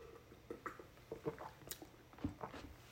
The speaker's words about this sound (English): Sorry, I'm speaking into a 2-litre jug. Actual pouring jug of juice. Because that's how I like to drink my juice. Because it just has a 2-litre tops.